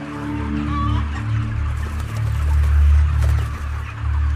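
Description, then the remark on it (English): A cage-free, humanely raised hen with a bad respiratory problem clucks in short, irregular bursts over a steady low rumbling background noise. No one speaks. “Can you hear it? She's your premium, prime time, no antibiotic ever, cage-free, humanely raised, blah, blah, blah, blah, whatever else is on that label.”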